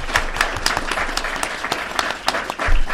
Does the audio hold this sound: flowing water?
no